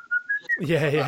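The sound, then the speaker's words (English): A short, clear whistled phrase of three rising notes from a main theme, whistled along to a ukulele demo, plays for about half a second, then a person starts talking right after it. “because I've done a quick demo of me playing ukulele, and I thought I was whistling along to it.”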